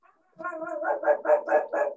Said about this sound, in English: I think someone else is walking their dog outside.